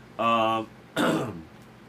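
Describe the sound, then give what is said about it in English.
A fairly loud throat clearing with a voiced, hum-like tone, followed after a short pause by a single harsh, breathy cough. No one speaks. “I think at least 30 minutes of this show, though, has been coughing.”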